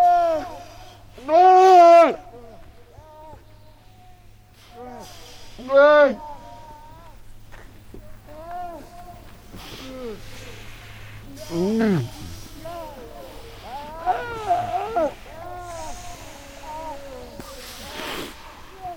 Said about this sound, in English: The seals live on fixed ice that's attached to the coast, but in the winter, they stay in the water to dodge blizzards. Douglas Quinn recorded the calls of these mother seals and their pups for the Wild Sanctuary ….